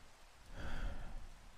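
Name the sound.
rain falling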